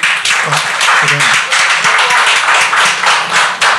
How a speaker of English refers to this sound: Okay. Welcome, please clap for.